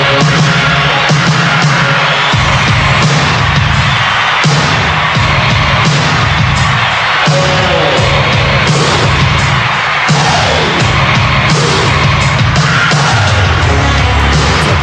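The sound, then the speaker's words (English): A loud 80s rock track recorded in a studio, with crowd cheering and shouting added in, driven by a heavy, steady drum beat with booming hits. Dense and constant throughout, with no speech. “Now, keep in mind, they're putting in crowd noise into a song that was recorded in the studio.”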